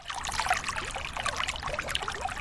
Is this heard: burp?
no